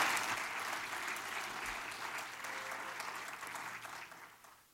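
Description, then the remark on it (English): A church audience breaks into sustained applause to congratulate a pastor, many hands clapping in a dense, steady wash that holds strong for several seconds before gradually tapering off at the end. “Give him a big hand clap right now and congratulate him.”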